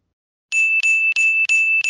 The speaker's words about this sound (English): Yes, ring the bell.